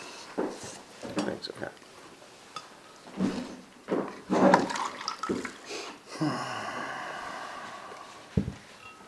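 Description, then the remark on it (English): A few knocks and clinks of handling, then water pours steadily into a cup for about two seconds, its tone rising as it fills, followed by one more light knock. “would you mind passing me a cup, please, and the water?”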